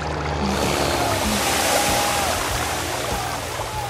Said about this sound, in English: Oh, here comes the fucking planes again. The Blue Angels are coming. I wonder if they're going to blow smoke or write something in the air.